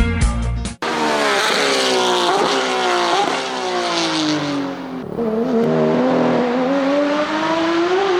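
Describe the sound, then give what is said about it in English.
Race car engines scream past, their loud whining pitch climbing and dropping through gear changes, with tires squealing amid the roar and no voices. “And was that a segue in there? Is there a race coming up in St. Petersburg this weekend or something like that?”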